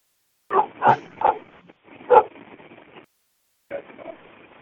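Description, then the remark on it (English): A pit bull barks angrily in a quick run of four loud, harsh barks, followed by a lower, rougher stretch of snarling noise and a short final burst after a pause. “Yeah, it sounds like your pit bull's pissed off or something.”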